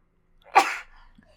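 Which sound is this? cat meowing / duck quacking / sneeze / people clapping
sneeze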